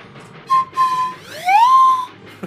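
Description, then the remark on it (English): A handheld whistle blown in three blasts, a short toot, a longer steady one, then a final blast that slides upward in pitch and holds, mimicking a train whistle. “Okay, well, I can't find that one, but pretend this is a train whistle.”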